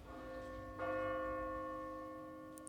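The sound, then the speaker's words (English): A single deep bell strike at midnight rings out and hangs in a long, slowly fading resonance with rich harmonic overtones, heard alone without any talking. “Midnight. But the bell only chimed once.”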